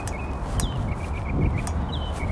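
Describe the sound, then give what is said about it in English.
Birds sing outdoors in a steady series of short, high chirps and whistles over a constant low rumble of background ambience; no one speaks. “You hear the beautiful birds.”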